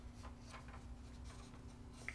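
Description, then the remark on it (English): Soft, papery rustles of pages being turned, a handful of brief swishes scattered over a couple of seconds, quiet over a faint steady hum, with no one speaking. “Besides turning pages.”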